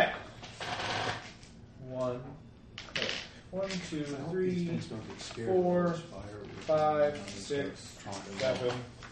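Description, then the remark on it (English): A handful of dice clatter and rattle across a tabletop in quick, clicky bursts, mixed in with people talking. “Do you get to roll a lot of dice there”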